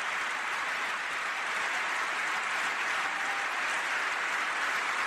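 Steady applause from Republicans only, with Democrats not applauding, after a remark that African-American unemployment is at the lowest rate ever recorded; a dense wash of clapping that holds at an even, fairly loud level for about five seconds with no voices on top.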